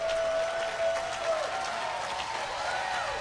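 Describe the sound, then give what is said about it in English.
An audience claps steadily, a dense, even patter of many hands at moderate volume, with a faint sustained tone running underneath and no speech. “Now the clapping is not nearly as loud, but we're going to...”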